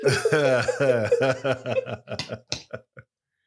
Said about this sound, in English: No, I apologize because I feel like I made that worse than what it was. Oh, okay. Like, I feel like I caused the coughing fit.